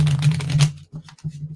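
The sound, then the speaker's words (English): A deck of playing cards is shuffled in a quick burst of crisp, rapid riffling that ends abruptly, followed by a few softer, muffled handling sounds. “So I'm going to shuffle”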